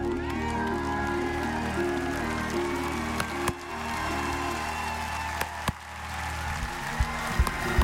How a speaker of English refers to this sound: Look at somebody next to you. Keep clapping. Look at somebody next to you till they wonder what they're looking at.